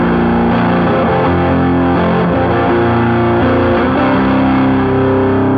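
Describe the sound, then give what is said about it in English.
A loud, distorted electric guitar plays through two doubled delay pedals, each note smeared by a quick slapback echo that thickens the sustained, buzzing tone without any talking. “A little more of a delay effect on that one. I like to double them. It gives you kind of a slap effect.”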